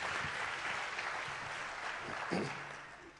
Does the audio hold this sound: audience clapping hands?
yes